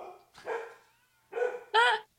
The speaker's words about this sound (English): The dog. Hold on. My dog, who never barks, is barking.